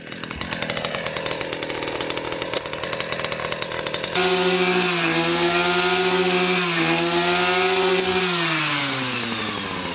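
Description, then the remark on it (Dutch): A small engine mower runs steadily, first with a rough, rattling drone, then shifting into a louder, buzzing whine whose pitch rises and dips as it revs. No one speaks. “Het is echt zo'n verschrikkelijk geluid. Dit is zo'n maaier.”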